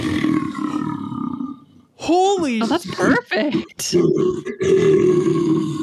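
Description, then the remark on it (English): A person growls like a bear into a ceramic tiki glass with a glass bottom, making a loud, wavering, hollow roar that lasts a couple of seconds. Excited voices react afterward. “It's a tiki glass that's made of ceramic, but it's glass bottom. So it might go like, if you ever watch an old movie with a bear, you just hear.”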